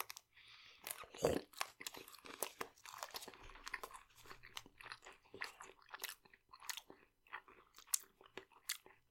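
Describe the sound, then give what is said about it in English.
Someone chews a Nutrageous caramel peanut candy bar, with repeated crunchy, sticky bites and wet mastication clicks in an uneven rhythm, fairly loud throughout, with a sharp crunch near the start. “Quite chewy with the caramel.”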